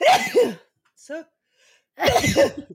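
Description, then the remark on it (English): Two loud sneezes about two seconds apart, with a short voiced breath or gasp between them. “Bless you.”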